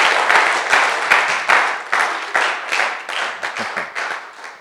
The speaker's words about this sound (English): Clap your hands for Jesus as you take your seats. See, the hands are not many, so you have to clap with your strength.